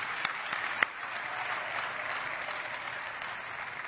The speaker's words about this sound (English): So you guys in that other assembly, y'all give her a shout out, a clap. We'll clap for her too, okay?